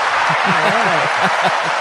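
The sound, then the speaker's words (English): A clapping and cheering sound effect: a crowd claps and cheers, a dense wash of applause with voices rising and falling through it, loud and steady for a couple of seconds. “I don't know where the clapping is. Oh, here we go. Hey, there it is.”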